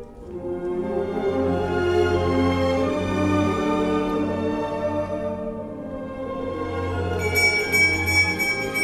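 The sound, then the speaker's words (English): Sustained orchestral music swells throughout, and near the end a small bell rings in a quick, bright, repeated tinkle over the music. “Oh, what a beautiful bell.”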